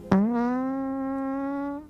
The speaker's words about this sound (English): Oh, God. Sorry. I farted.